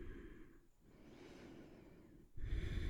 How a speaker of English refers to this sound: Breathe and relax. Good. Keep breathing.